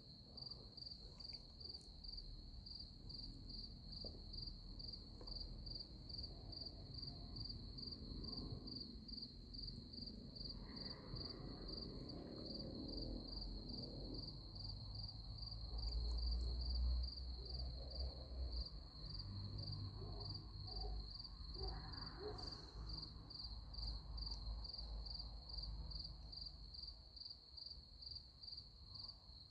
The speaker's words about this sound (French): j'espère que ce n'est pas des trucs qui viennent bouffer tous les arbres, je sais pas quoi. Des xylophages fous qui vont manger mon abricotier sublime avant même que j'aie réussi à l'identifier. Mais enfin non, ils ont l'air trop sympathiques.